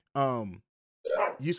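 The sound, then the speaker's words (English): A dog barks a few times, starting with a long drawn-out bark that falls in pitch, then two shorter, rougher barks after a brief pause, loud. “As my dog goes the hell off.”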